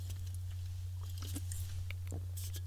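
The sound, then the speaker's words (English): Someone sips sparkling water: soft wet slurps, small mouth clicks and a gulp, with faint crackly fizz, all quiet over a steady low electrical hum. Nobody speaks. “That's my smooth transition there as I take a break here to mentally regain myself and take a drink of this.”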